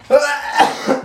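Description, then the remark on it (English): A short burst of sneezing: three sharp, breathy explosions in quick succession, fairly loud, with no talking around them. “Bless you.”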